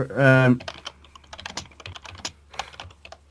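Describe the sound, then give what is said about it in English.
Rapid, irregular clicking of keys on a computer keyboard, fairly quiet, as someone types "Google" into Google, continuing for a few seconds after a brief humming tone at the very start. “I don't know why I just went on Google typing Google.”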